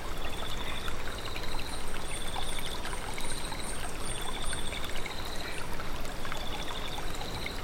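A stream trickles and babbles steadily, a continuous wash of gentle running water with no voices, while faint repeated bird chirps sit high above it.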